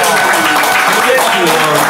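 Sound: applause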